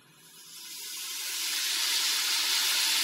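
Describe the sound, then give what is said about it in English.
Bacon sizzling in a pan: a dense, steady crackling hiss with bright high-end fizz, swelling louder over the first second or two and then holding constant, with no voices. “That is bacon.”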